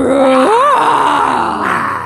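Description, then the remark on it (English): People voice loud, growling dinosaur roars, a few overlapping groans that slide up in pitch then trail into a rough, sustained rumble, with no words spoken. “quick, dinosaur noises, stat!”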